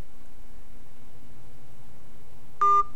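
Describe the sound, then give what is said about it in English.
A single short electronic phone keypad tone from dialing a number sounds near the end, clear, after nearly three seconds of faint low hum with no talking. “All right, give me the phone. You dial a number.”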